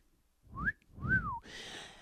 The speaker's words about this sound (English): I mean, listen, don't grab my cock or finger my ass unless I fucking whistle twice.